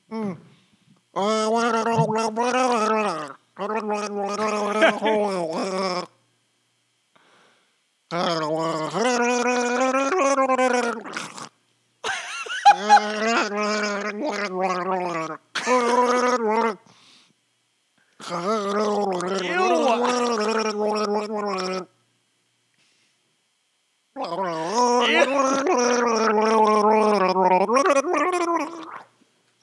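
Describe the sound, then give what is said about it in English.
Someone gargles mouthwash in long, bubbling bursts with a pitched, voiced tone, pausing briefly between each stretch, fairly loud, with no clear speech, while trying to gargle a song until they have to spit. “whenever you're ready, you're going to gargle … until you have to spit.”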